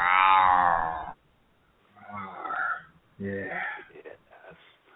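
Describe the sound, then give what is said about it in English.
A man's voice imitates a cat meowing: a loud, drawn-out yowl followed by a few shorter, wavering meows. “meow.”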